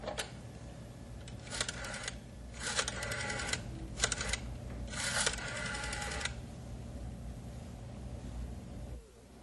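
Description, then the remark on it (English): Several short bursts of rapid clicking, a telephone being dialed, like a rotary dial spinning and returning, come in uneven groups over a steady low hum, fairly clear with no one speaking. “Can't seem to get the number I want.”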